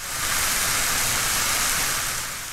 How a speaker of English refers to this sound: Did you say it sounds like rain? That's right. It's rain, except it's actually onions frying in a pan. Yep. Rain is an easy one to do. A lot of things sound like rain.